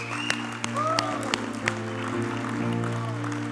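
An audience claps in a steady rhythm after three people gave their life to Jesus. Sharp hand claps land about three times a second over sustained keyboard tones, with voices and whoops rising in the mix.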